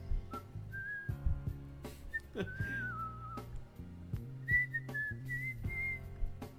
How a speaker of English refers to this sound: I'll just whistle. That's the way to go. Yeah. Naturally, I make slightly less money, you know, because I'm just whistling.